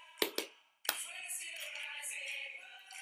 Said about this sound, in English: Hey, oh, the claps.